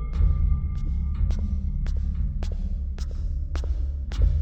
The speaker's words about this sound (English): You are walking down the stairs, and as you walk further down, you hear a hum, like a mechanical hum. And they all hear this.